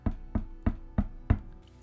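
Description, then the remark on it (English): Five soft, dull knocks on the back door of a bungalow at night land in a steady, evenly spaced rhythm. Each is a muted thud that fades quickly, with no voices around them. “Five soft knocks sound again coming from the back door.”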